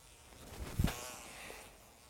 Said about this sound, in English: There's mosquitoes in here. There's one right here.